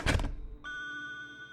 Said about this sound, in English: Her awesome news burning a hole in her throat, and as she closed the dark, heavy door behind her, the Yale lock made a satisfying click.